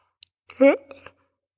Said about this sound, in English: Sorry, yawning so much.